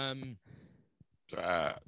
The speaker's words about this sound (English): On mic, burped. Sorry. I hate when people do that. That was disgusting.